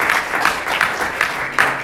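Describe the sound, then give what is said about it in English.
A conference audience breaks into a round of applause for the CalSPR crew and exec board, dense overlapping claps forming a steady, loud wash with brighter bursts every few tenths of a second, no voices standing out. “we just give them a round of applause for all the work.”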